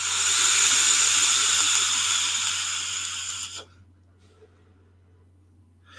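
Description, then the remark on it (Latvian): A steady hissing draw on a vape set to 70 watts lasts about three and a half seconds, then cuts off sharply into near silence with only a faint low hum beneath. “Nu, bet tvaika mākons ir.”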